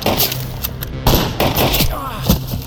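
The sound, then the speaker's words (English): A volley of gunshots, roughly five sharp, loud bangs at irregular intervals, each a broad crack that fades quickly, with a busy rumbling background between them. “Shots fired! Shots fired!”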